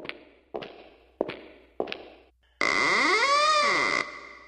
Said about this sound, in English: Is that another ring in the door? Oh, there it is again. I guess we got somebody else here.